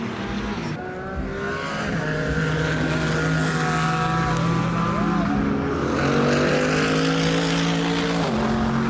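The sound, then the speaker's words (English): A loud, steady engine drones throughout at a night Grand Prix race, its pitch shifting up and down slightly as it revs, with a continuous rumbling hum and no speech over it. “I love that engine though.”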